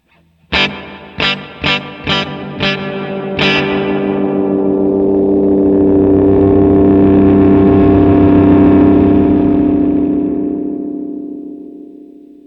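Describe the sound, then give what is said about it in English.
Six sharp guitar strums ring out in quick succession through a reverb pedal set to maximum with its EQ control turned up, then blur into a thick, swelling wash of reverb that feeds back into itself, building and sustaining for several seconds before slowly fading, with no one speaking. “It's acting more like a decay knob, like it's really stretching it out and then, you know, kind of feeding back into itself or something.”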